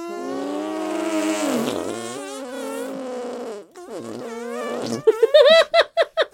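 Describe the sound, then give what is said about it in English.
Squelchy arm farts pitched up and down like a tune, a long wavering stretch followed by a run of quick, rhythmic bursts at the end, loud with no talking. “Oh, we have to do musical arm farts.”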